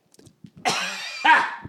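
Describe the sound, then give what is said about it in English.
A couple of harsh, raspy coughs from a person with a scratchy throat, fairly loud, preceded by a few soft throat noises. The first cough is drawn out and the second follows quickly. “aside from the scratchy throat and the occasional cough, I feel fucking fine.”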